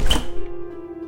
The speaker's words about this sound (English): Nancy, I say as I unlock the door.